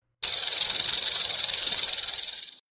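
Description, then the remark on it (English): A rattlesnake's tail buzzes a warning in a steady, dry, high-pitched rattle for about two seconds, loud and continuous with a fast fluttering pulse, then cuts off abruptly. No voices. “My tail. A rattlesnake's tail. It had sounded its grim warning without conscious thought.”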